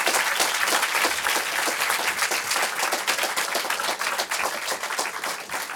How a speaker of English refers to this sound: Join me in applauding our debate participants one last time.